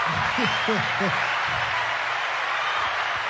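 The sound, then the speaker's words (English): Steady applause from an audience at Torque NYC greets the introduction of its leadership team. It is a dense, even wash of clapping, with a voice briefly calling out over it near the start. “You see why everybody can't get an applause? Because you see how long that was?”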